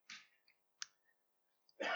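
Pages rustle as an audience turns through their Bibles to 1 John chapter 1 during a church reading: a few short, papery swishes and flicks, then a louder, fuller burst of rustling at the end. No one speaks.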